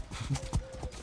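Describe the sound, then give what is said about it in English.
Horse hooves clip-clop in quick, uneven beats as horses carrying riders gallop off through opened gates, the rapid thuds moderately loud, with a faint steady tone underneath. “So the gates are open and your horses take off.”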